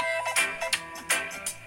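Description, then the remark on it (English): A familiar cell phone ringtone melody sampled into a song, its bright chiming notes recurring in a steady rhythm over a sustained musical backing at moderate volume, with no voices. “You know this default cell phone ring that comes with your phone? Did he sample the default cell phone setting?”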